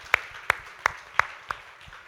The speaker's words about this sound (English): and as they do, why don't you give them a round of applause this morning.